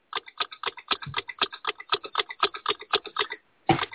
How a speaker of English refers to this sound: Let's see, we'll have to play the ticking clock.